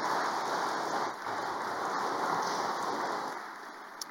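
A steady round of applause from a parish audience celebrating a deacon's ordination: dense overlapping clapping that holds at an even level for several seconds with no voices over it.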